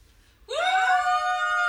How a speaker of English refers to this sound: How you doing, girls? I want to hear you scream, scream!